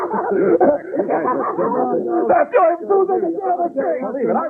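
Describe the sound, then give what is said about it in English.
A person imitates a small Mexican chihuahua barking, letting out a rapid, continuous run of high-pitched yaps and yips, fairly loud. “Have you ever heard a Mexican dog bark?”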